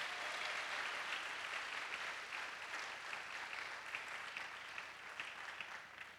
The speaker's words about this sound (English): So let's clap for Adulam Ministries.